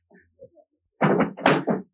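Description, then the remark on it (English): A few faint taps and clicks, then a burst of loud wooden clunks and scrapes as a speaker grabs a chair, lifting it and setting it back down on the floor to sit on. “I'm going to just grab a chair for a minute because I think it's just good.”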